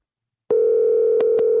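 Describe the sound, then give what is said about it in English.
A steady, clear electronic telephone ringing tone of an outgoing call starts abruptly after a brief silence and holds at an even level, broken by two short clicks near the end. No one speaks. “I'm gonna call him right now.”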